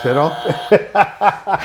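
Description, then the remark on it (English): A harsh, nasal buzzer sound effect, used on a show as the buzzer for when somebody says something stupid. A steady buzzing tone is followed by four quick, evenly spaced buzzy pulses, loud and on its own. “And this is our buzzer when somebody says something stupid, and obviously I said something stupid, right?”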